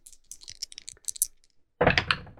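Dice clatter close by: a quick scatter of light plastic clicks, a brief pause, then a louder, denser rattle as they tumble across a hard surface.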